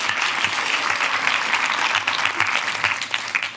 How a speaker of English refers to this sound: And so I remember at the time being inspired by my mother, who's here tonight, and she would go out, there you go, round of applause for my mother.